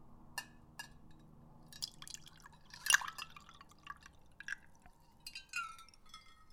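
Pink vodka is poured into a glass, with splashy trickles, scattered drips and a sharp clink near the middle, over a faint steady hum. No one speaks.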